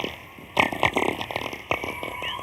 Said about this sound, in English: Oh, that is weird. Is that an owl? I don't or know. Or an alien? It's most likely an alien. That's cool. So that is the Northern Lights. That's what they sound like. I think I could sleep to that.